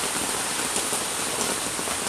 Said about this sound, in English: And now, you know, it's raining again, and now we have a flood warning.